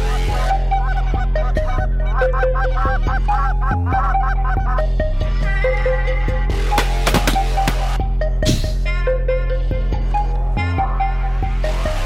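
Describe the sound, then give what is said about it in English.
A man blows a goose call, producing a loud, continuous run of honks and clucks in quick succession, with a few sharper, raspier blasts mixed in and no talking. “Finally, a guy can blow a goose call.”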